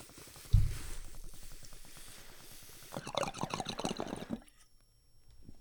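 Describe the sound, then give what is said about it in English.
A water pipe bubbles in a steady, gurgling stream for about three seconds after a soft knock as someone takes a hit of tobacco, growing louder and busier before stopping abruptly. Fairly quiet, with no one speaking. “I'm gonna take a little break right here. Grab the water pipe.”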